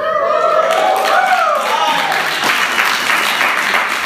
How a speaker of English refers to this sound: All right, I don't know what you're clapping about because you didn't work.